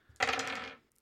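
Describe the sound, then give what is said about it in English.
Dice, including blood dice in a tabletop game, clatter across a hard table in one sharp burst that rattles for about half a second, followed by a brief light tap as they settle. No one speaks. “But you can expend willpower to re-roll a critical fail on the blood dice.”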